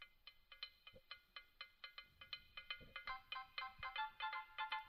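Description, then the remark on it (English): A bright, bouncy calypso-style cricket jingle plays from a phone speaker, quick plucked or steel-drum-like notes in a steady, lively rhythm that grows busier toward the end, with no talking. “What's this for? Cricket, right? It's for cricket. Sounds like cricket. It's got a little calypso to it.”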